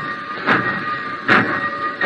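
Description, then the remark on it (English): A black train pulls away from a worn wooden platform in the cold early morning, its steady mechanical rumble and hiss broken by loud rhythmic chuffs about every eight-tenths of a second, with no voices. “He watched the black train. He didn't move all the time it was going.”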